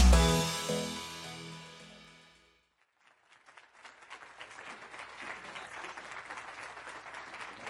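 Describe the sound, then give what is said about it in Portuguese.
A short musical passage fades into a brief silence, then an audience at an Amway talk breaks into steady, moderately loud applause, a dense crackle of clapping that continues to the end without any voices. “Nossa, esses aplausos parecem muito xoxos.”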